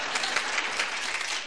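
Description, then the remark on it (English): A studio audience bursts into sustained applause, a dense, steady wash of many hands clapping, holding at an even level with no voices standing out. “Now would you applaud if there's Kleenex and a little baggie in that purse?”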